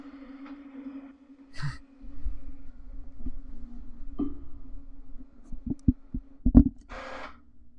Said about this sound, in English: A lot of noise there. I don't know if you can hear it. It's super distracting to me. Just letting the printer shut down for a second. All right, I think the printer's, it's still shutting down, actually. There it goes, finally shut down.